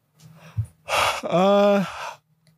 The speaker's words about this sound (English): yawned in the mic, you piece of shit.